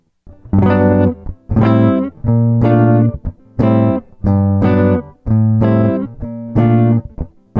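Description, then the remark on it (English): A guitar strums a series of C major seventh chords in a steady rhythm, each chord ringing with bright, full harmonics before the next, with no voices. “Here is the original sound with the C major seven chords.”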